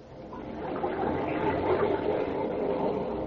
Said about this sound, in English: Those are waves of the Mediterranean caressing the shores of romantic Mallorca, where Elgin American found the simulated pearls of all time.